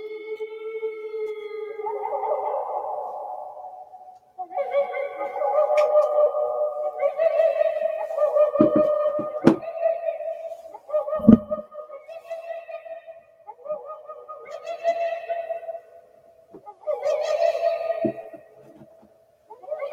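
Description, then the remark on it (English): A Spinosaurus aegypticus vocalization: a series of eerie, wavering tonal calls with rich harmonics, about six phrases separated by brief gaps, punctuated by a few sharp low cracks, with no talking. “But we are going to listen to how freakishly scary this thing sounds. Let us listen to Spinosaurus aegypticus.”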